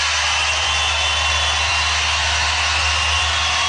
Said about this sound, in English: Standing ovation at CPAC. Standing ovation.